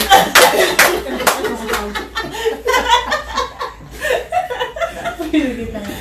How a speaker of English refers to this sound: I just want to do the clap.